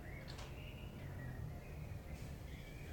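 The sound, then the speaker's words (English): Faint birds chirping, a steady thin twittering with a couple of brief brighter calls, set against a low background rumble and no voices. “Have you heard the birds? They're pretty busy.”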